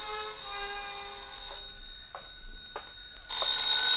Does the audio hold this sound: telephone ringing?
yes